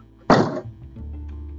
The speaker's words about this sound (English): Or is this door that has an issue of being not shut properly?